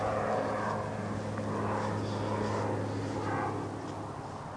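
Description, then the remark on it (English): A steady, broad roar of Interstate 5 traffic from over a ridge with a low hum beneath it, heard in a cemetery, while a jet departing nearby SeaTac airport swells and slowly fades overhead. No voices. “The drone of Interstate 5 over the ridge is constant, and every 15 minutes a jet leaves nearby SeaTac.”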